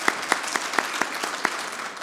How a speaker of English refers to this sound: We see what Russian aggression is occurring in Ukraine as our Ukrainian allies stand up valiantly to that aggression. We see the, let's give them a round of applause on Ukrainian Independence Day.